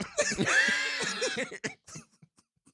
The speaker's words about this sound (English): You're not sick, man. You've been coughing today. No, I just got a cough. I'm not sick. I just got a cough.